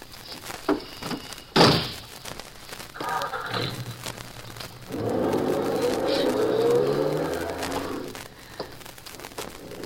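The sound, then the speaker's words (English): A car door slams shut with a sharp thump, then an engine starts and revs as the car, with Ohio license number 12412, pulls away, its rumble building and fading away. “Officer, the man that just drove by in that car is wanted by the FBI.”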